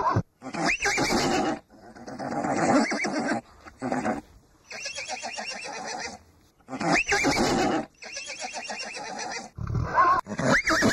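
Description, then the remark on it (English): Several loud horse whinnies and neighs from police horses in Adelaide in quick succession, shrill quavering calls with brief pauses between them, and no one speaking. “Damn you, Adelaide police horses.”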